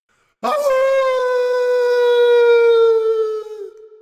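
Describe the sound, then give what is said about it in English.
A person lets out one long, loud wolf-like howl that holds a steady pitch, slowly sags lower and trails off after about three seconds. It is a human voice imitating a wolf. “And howl at the inaudient sky for Ishishu Nanu.”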